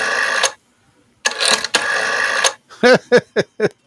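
A rotary phone being dialed: two stretches of whirring, ratcheting dial spin, then a quick series of four short mechanical bursts as the dial returns, fairly loud with no talking.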